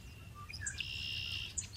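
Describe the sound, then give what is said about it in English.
Marsh birds sing in a quiet outdoor setting, with short high whistles and chirps plus one long, steady trilling note, set over a faint low rumble of background noise. “Some birds there, they sang just like this.”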